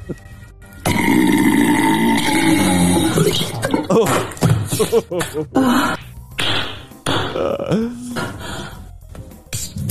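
Loud gassy, fart-like noises from a woman's anus with a dildo still inserted, in played audio: a long, droning, burp-like blast at the start, then a string of short, choppy, sputtering bursts with brief gaps between them.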